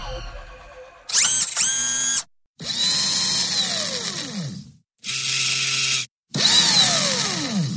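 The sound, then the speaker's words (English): A robot's electric motors buzz and whine in four loud bursts separated by brief silences as they move its metal limbs, their high-pitched tones sliding up and down. No voices. “Is that what you imagine a robot sounds like? Buzzing and whining of electric motors moving its metal limbs?”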